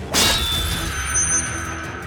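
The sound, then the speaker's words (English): A sharp metallic crash as an orichalcum dagger shatters against a shield during a fight, sending sharp shards flying, followed by high, bright ringing tones that linger and slowly fade for over a second. “Bahadur's dagger shattered, sending razor-sharp orichalcum shards through his hand”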